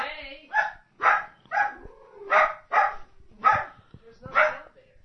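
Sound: dog barking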